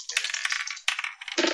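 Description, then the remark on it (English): Dice clatter and rattle across a hard tabletop in a couple of quick, bright bursts, fairly loud, with no voices over the sound, as players roll for dexterity. “Everybody roll dex.”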